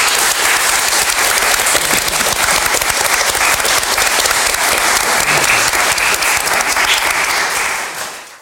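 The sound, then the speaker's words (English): A large audience claps steadily and loudly for several seconds, a dense, sustained wash of applause that holds its level before fading away at the end. “And can I give all of these a massive round of applause, please?”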